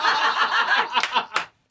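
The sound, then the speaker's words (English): Two people give a few sparse, sharp claps for a joke over a wash of audience chuckling and laughter, ending with one last loud clap after a brief lull. “See, this, you two assholes clapping now, is going to have me put that back in rotation, and then it's going to bomb again.”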